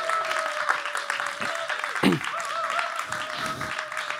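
An audience applauds steadily for several seconds for a man invited down to the front to speak, a dense wash of many hands clapping, with a faint sustained tone running underneath and one brief louder burst midway.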